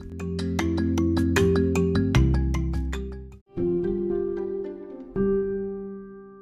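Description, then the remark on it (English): A bright electronic cell phone ringtone plays a looping melody of quick plucked notes over sustained tones, fairly loud, with a brief break before the tune continues. No one speaks. “please excuse me that I have my cell phone with me.”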